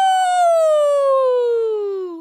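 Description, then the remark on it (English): Bast's sneeze ('Achoo!') draws out into a long, wolfish howl, one steady tone that slowly slides down in pitch for about two seconds before cutting off. “The sneeze drew out into a long, wolfish howl.”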